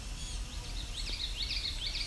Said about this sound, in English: So we're entering the Vine Mount Swamp. And we've got sounds like blue-gray gnatcatchers. Yep.